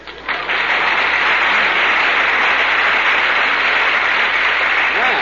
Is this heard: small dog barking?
no